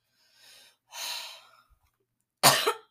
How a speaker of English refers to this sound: My apologies yet again for every time I cough.